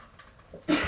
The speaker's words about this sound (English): Bless you. Bless you. You sneeze a 3rd time, I'm fighting you.